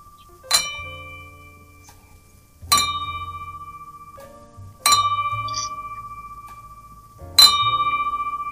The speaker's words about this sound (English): Okay. So we're going to do five bells.